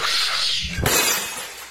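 A glass-shattering sound effect: a burst of glass shattering, bright and crackly, with a heavy impact midway and scattered shards tinkling away afterward. Loud, with no voices.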